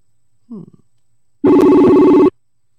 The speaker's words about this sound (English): I'm going to see if I can place a call while we are at rest right now and to see if I can get Mr. Roush on the phone